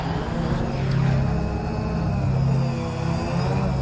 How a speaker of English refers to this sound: That's our hairdryer sound effect.